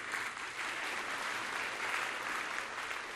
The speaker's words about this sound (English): Now, yeah, that's something that should be celebrated. Somebody should clap. at least a couple of people.